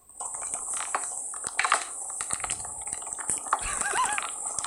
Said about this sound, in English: I recorded the boiling of the noodles because I was like, this sounds funny.